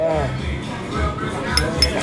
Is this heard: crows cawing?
no